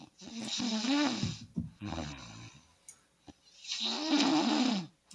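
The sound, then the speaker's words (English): Loud snoring with a throaty, rasping rattle: two long drawn-out snores with a shorter, rougher snort between them and brief pauses for breath. “Sir, what is that? What is what? Is that for you? What? Are you snoring?”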